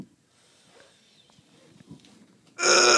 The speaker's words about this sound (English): I farted.